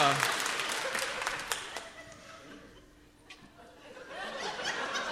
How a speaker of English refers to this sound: I'm trying to decide, is mammoth on sloth, is that, okay, clap if you think it's the book. All right, now clap if you think it's the song.